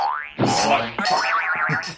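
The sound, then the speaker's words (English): A cartoonish bloop sound effect, the kind used to cover a curse: a quick rising sweep, then loud, bouncy, warbling tones that wobble up and down for about two seconds, with no talking. “Every time I curse, they make it go some bloop.”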